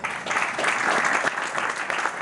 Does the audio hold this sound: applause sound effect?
yes